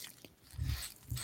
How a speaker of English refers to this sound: So the packaging gets an A+ because you're having a hard time cracking it. I need scissors or something over here. I think you're just going to bite and rip.